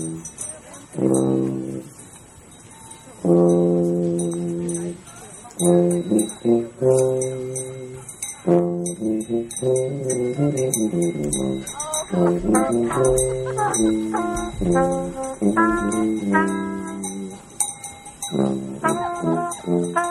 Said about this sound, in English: It starts out with a dude playing tuba.